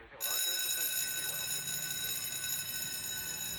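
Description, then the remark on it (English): The Rockford airfield crash alarm, set off by hitting the crash button, blares on abruptly and holds a steady, buzzy high-pitched tone rich in harmonics, loud and unbroken, with indistinct voices murmuring underneath. “You'd better hit the crash button.”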